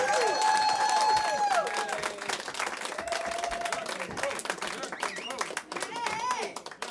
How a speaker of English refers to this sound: Keep clapping, you guys. Come on.